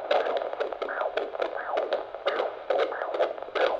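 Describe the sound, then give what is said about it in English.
A fetal heartbeat on an ultrasound doppler: fast, steady whooshing pulses, about two per second, the baby's galloping heartbeat, with a constant swishing hiss of the anterior placenta underneath and no voices. “It's the sound every new parent gets excited to hear. The heartbeat of their soon-to-be baby.”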